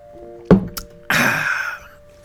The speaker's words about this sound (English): the other news I have right now is that I need a sip of ale.